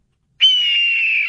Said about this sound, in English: And then we got a red-tailed hawk, which sounds like this, apparently.